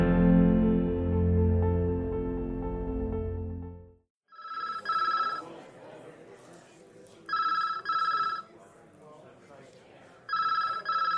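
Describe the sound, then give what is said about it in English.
After a sustained tonal hum, a telephone rings in three clear, evenly spaced bursts over a busy background of murmuring voices and office noise, in a busy police precinct, the Seattle Police Station. “The phone rings yet again in the busy precinct.”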